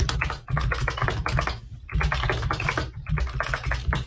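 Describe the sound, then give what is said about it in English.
Rapid, clattery typing on a mechanical keyboard, very close and loud, in quick bursts of keystrokes with brief pauses between them, with no voices. “Does my keyboard sound very loud? Yes. That's because my microphone is next to it.”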